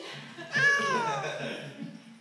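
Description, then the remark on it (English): A single long, drawn-out cat meow, fairly loud, starting high and sliding downward in pitch before trailing off, with a faint low rumble of background noise underneath. “I love dogs, but you know what's cuter than the cutest dog? Any cat.”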